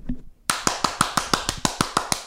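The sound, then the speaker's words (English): A quick, steady run of about a dozen sharp hand claps, loud and close to the microphone, overloading it, starting after a brief quiet moment and continuing in an even rhythm. “I just made the thing freak out when I clapped a lot.”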